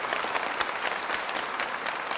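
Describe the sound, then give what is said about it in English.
An audience at a live taping claps steadily, a dense wash of many hands with no break in the rhythm and no voices standing out, holding at an even, moderate loudness throughout. “I think it deserves a round of applause.”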